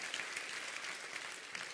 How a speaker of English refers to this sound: Somebody want to clap for our elder people? You want to clap for the lifers? It's awesome to have lifers in the church.